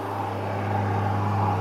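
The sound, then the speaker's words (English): A steady car engine rumble with a low hum and broad road noise, growing slightly louder as the car approaches, with no talking. “Hang on, we got a car coming.”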